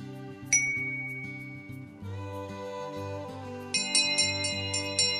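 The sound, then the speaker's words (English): A single bright ding, then the bell of a school by a bay rung in a quick series of clear, ringing strikes to call the children in from play, over a steady musical backing, prominent with no voices. “This is the bell on the school in the bay, ringing the children in from their play.”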